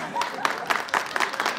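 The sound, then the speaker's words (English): A short burst of scattered audience applause, several hands clapping unevenly at a moderate level, with a faint murmur of voices underneath. “You're clapping for him? Don't clap for him!”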